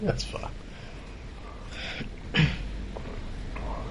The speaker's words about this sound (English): Sorry, I'm going to clear my throat here. We can cut that part. That's fine.